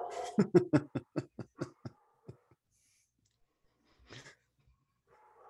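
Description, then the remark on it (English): A female pet dog barks in a rapid burst of about ten sharp yaps that taper off over two seconds, followed by quiet and one faint, brief sound a moment later. “Don't worry about my dog. She'll stop barking in like the next 10, 15 minutes.”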